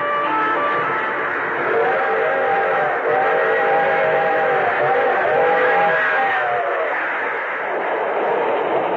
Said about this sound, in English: Picture this. A string of freight cars crossing a dusty stretch of lonely farmland.